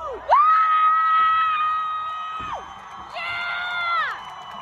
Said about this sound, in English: In this video posted to Twitter, you can hear the moment a crowd pulls the statue of Queen Victoria backwards off its stand and to the ground. It had earlier been doused in red paint while dozens of red handprints marked the base.